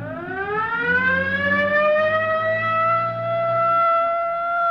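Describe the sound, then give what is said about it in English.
A police car siren wails loudly as the police car pursues another car, its pitch sweeping steadily upward and holding high, with a low engine-like rumble underneath and no voices. “Better hit the siren.”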